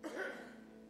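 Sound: throat clearing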